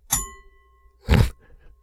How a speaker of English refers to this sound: Man, you rang the actual bell in the studio? Yeah, I did, man.